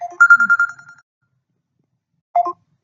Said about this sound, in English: if you guys hear a ring, it's my other phone.